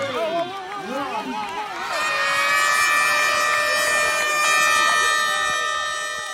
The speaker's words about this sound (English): There's such a rush of adrenaline, and I'm getting a little chills just talking about it, honestly, because you train for it, but once the air horn blows and everyone runs, you kind of not forget what you're supposed to do